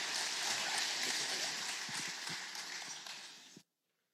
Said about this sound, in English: Can we give these families another round of applause?